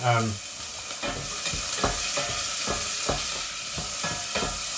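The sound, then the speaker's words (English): Pieces of half a red pepper sizzle steadily in a hot frying pan, with a quick, regular series of stirring scrapes cutting through the constant hiss. No one speaks. “I'm now going to put half a red pepper in.”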